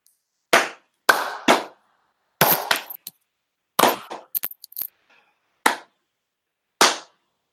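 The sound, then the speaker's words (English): A slow clap for Starfire, the rugby venue: sharp, loud single claps spaced unevenly across several seconds, each with a short ringing tail, and a brief flurry of quicker claps midway. No voices. “But before we get to that, we need a slow clap for Starfire.”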